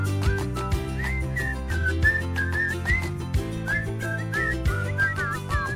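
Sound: person whistling a tune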